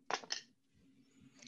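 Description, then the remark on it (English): Dice clatter onto a hard surface with two quick, sharp clicks, one die landing on the floor, then settle into near silence with only a faint rattle toward the end. “One of my dice landed on the floor, so that just don't count.”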